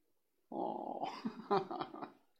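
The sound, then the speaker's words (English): A female dog, bothered by fireworks, growls, a low rumbling snarl that roughens into a few sharp, agitated bursts before fading, lasting about two seconds with no talking. “Bark, bark.”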